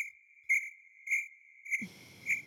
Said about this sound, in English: Can you please put in like crickets chirping here?